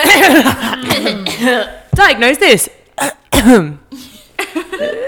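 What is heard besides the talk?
coughing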